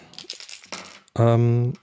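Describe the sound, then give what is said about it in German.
Dice clatter and rattle across a hard table in a few quick bursts, followed by a short, loud sustained vocal hum. “Ich glaube, so funktionieren Würfel nicht.”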